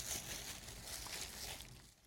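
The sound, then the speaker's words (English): Soft, continuous crinkling and rustling of gift ribbon being handled, a faint papery texture with small scratchy bursts, no voices, trailing off toward the end. “That was me with the ribbon.”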